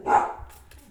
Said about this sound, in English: Oh, sorry. Our dog is barking. That's not distracting at all.